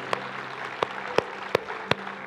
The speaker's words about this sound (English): Would you give the Lord a hand clap with those who are giving their lives to Jesus?